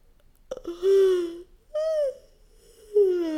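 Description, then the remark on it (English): A fairly loud voiced yawn from a person stretching up on one side, drawn out in three long groaning stretches with sliding pitch and short breathy pauses between them; no talking. “Maybe move into a state of flow starting now by noticing if you stretch up on one side, space between your ribs and a yawn.”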